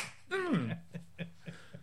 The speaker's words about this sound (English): There it is. Oh, bitch slap you, Mr. J.